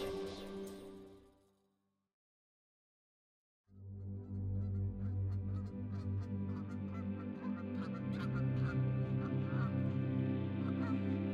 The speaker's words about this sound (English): The geese are returning to their summer homes, the lake next door and northward, creating great air shows in the sky, flying V's above my head as they pass, arrows pointing onward, onward, onward, shapes of shadows like weather.